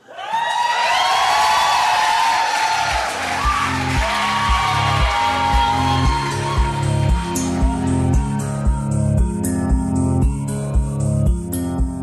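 A lively crowd cheers, yells and whoops loudly for several seconds, the noise gradually thinning as music with a steady bass beat rises up beneath it.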